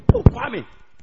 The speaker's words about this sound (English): In the middle of the night, his friend came to knock. And the man was snoring. And the friend was knocking.